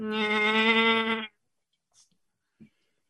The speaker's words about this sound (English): Oh yes, and I transitioned or ended it with some bleating goat noises.